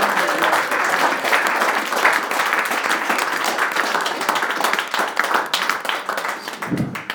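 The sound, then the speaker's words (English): A crowd breaks into sustained applause, many hands clapping in a dense, crackling wash that stays loud and steady for several seconds before easing slightly at the end. “So guys, a huge round of applause for all of you.”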